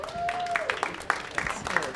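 An audience claps in a dense, irregular patter of overlapping hand claps at moderate loudness, steady for about two seconds, with a faint sustained tone sliding downward near the start.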